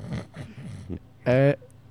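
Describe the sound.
After a few muffled spoken sounds, a voice gives one loud, short, buzzing comic snore, a theatrical imitation of snoring that is abrupt.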